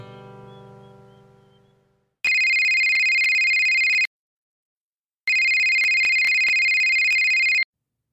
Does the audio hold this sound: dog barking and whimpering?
no